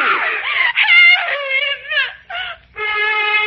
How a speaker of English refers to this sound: The girl resisted me, and even as my hand closed over her mouth to shut off her screams